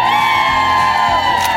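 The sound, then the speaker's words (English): A large plaza crowd in New York cheers and whoops continuously, a dense, loud wash of shouting voices with sustained high-pitched yells riding on top throughout. “You know what, Plaza Crowd? You are bringing it yes.”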